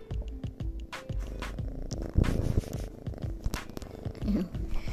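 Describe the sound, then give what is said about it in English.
A cat purrs steadily, a continuous low rumbling rhythm, with scattered rustling and soft clicks over it and no one talking. “Can you hear my cat again?”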